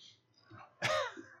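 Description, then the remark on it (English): A short intake of breath, then a single sharp, explosive sneeze, with a quick tail-off afterward and no talking. “Well, I'm about to sneeze twice.”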